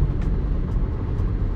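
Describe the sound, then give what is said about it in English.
A steady low rumble fills the space, like road and engine noise heard from inside a moving car, constant and fairly loud with no voices. “Just casting from the car, I just thought about something.”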